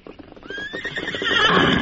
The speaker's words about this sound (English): Well, a big white stallion in a paint, eh?